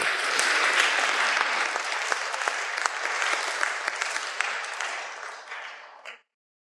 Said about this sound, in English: Give them a round of applause, please, folks.